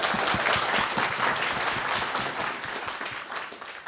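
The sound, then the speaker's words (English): A live audience applauds steadily for MPs at a Consumer NZ pre-election event, a dense wash of many hands clapping at once, loud, holding strong before easing off slightly toward the end. “Can I get one more round of applause for all of our MPs?”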